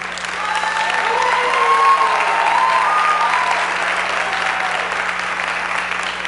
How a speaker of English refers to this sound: There you go. There you go. Give this gentleman a big hand. There you go.